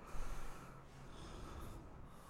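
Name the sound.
heavy breathing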